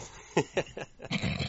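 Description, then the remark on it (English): A dog named Doggett barks four or five times in quick, sharp bursts, moderately quiet, the last bark trailing into a rougher, drawn-out yap. “And is that the terror that barks in the night?”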